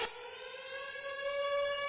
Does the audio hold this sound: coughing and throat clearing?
no